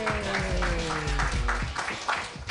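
A comedy show audience applauds a comedian with a dense wash of many hands clapping. A voice briefly cheers over it at the start before the clapping carries on alone.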